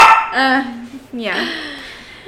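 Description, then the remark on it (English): A dog kept in a cage barks, giving two drawn-out, loud yelping barks with a whiny, pitch-bending tone, one right after the other. “Sorry, my dog's in the cage. Because I have a kitten. So they can't... He's so loud.”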